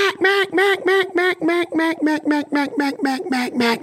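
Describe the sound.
A duck call blown in a fast, unbroken string of about fifteen loud, raspy quacks on a single breath, evenly paced and gradually dropping in pitch toward the end, with no talking.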